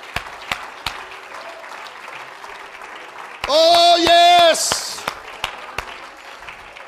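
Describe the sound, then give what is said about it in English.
A church audience claps its hands unto Jesus in a dense, steady patter that runs the whole time, with a few sharper claps standing out. Midway, a man's voice briefly rises over it, loud and sustained. “Oh, let's clap our hands unto Jesus right now.”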